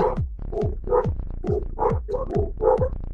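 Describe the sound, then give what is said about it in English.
A dog barks rapidly and repeatedly, about seven sharp barks in a steady, insistent rhythm, fairly loud, with no one talking. “Dogs or barking.”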